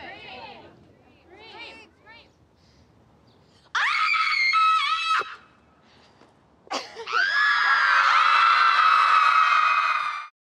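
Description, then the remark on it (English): A person lets out two loud, raw screams of anger, a shorter one followed by a long sustained one, after a few quieter breathy vocal sounds at the start. “I'm angry and I want to scream.”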